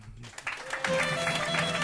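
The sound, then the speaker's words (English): An audience claps and cheers for the band, a short burst of dense, steady applause that swells in quickly and holds at full strength, with some crowd voices mixed in. “How about a hand for the band?”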